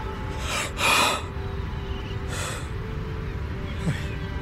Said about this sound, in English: And the truth swooped down on me. I gasped, tears coming to my eyes.